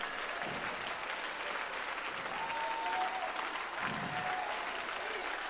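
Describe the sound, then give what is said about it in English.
A large audience claps steadily and continuously, a dense wash of many hands filling the space, with faint voices calling out underneath the sustained applause. “Come on, clap until you feel something come out of you.”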